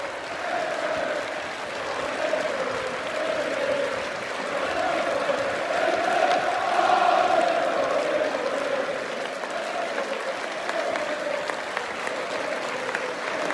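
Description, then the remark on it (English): Sustained football stadium crowd applause given to Van Dijk, a dense steady roar of clapping that swells slightly midway and holds at a fairly loud level throughout, with a faint murmur of voices in the mix. “Van Dijk's given the applause here.”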